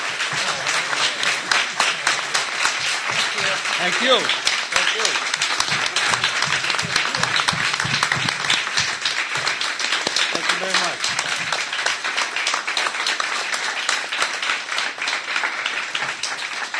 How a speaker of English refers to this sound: So first of all, let's give these guys a round of applause for being here. Thank you.